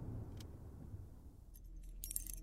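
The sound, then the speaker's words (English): Keys, a silver one for the deadbolt and a gold one for the handle, jingle and clink in short metallic bursts, growing busier toward the end as they are fumbled at a door lock, over a low steady background rumble. No one speaks. “Why are your keys so damn complicated?”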